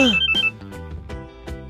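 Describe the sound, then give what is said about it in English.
A phone rings with a bright, melodic electronic ringtone, a quick repeating pattern of tones that carries on steadily with no voices over it. “And suddenly the phone rings.”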